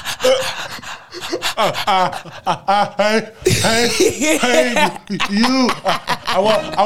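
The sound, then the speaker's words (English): A voice imitates sobbing, with wavering whimpers broken by loud, heaving gasps for breath, continuous for several seconds. “you know how you start crying, but you got that part.”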